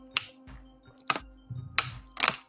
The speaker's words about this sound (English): Oh, I needed that sip.